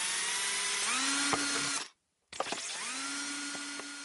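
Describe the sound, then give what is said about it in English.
A power drill whirs up to speed and bores holes into a plastic lemonade bottle in two loud bursts separated by a brief silence, the motor's pitch rising each time it spins up. No one speaks. “So here we go with the first hole.”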